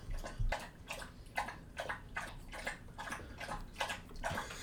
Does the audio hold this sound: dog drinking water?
yes